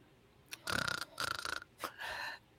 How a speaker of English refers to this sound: But he's snoring.